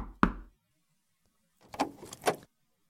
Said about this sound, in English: So, nervously, Nai Chin went into the rich man's house and knocked on his office door.